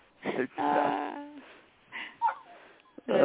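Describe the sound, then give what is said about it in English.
A dog gives a few drawn-out barks and yowls, with a longer tonal one early on, separated by short pauses and followed by a sharp final bark. “He's barking back at you.”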